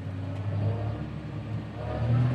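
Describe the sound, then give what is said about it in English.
A tractor engine revs up steadily to around 540 revs, driving a grass topper that is cutting grass in a field. A low rumbling drone with a rising harmonic whine swells louder toward the end; no voices. “Okay, so I just need to rev it, get it to like 540 revs.”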